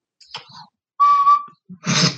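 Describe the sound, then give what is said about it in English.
A single steady high note from an Irish tin whistle, held for about half a second, followed by a short breathy, airy rush of noise. No one speaks. “It's an Irish tin whistle.”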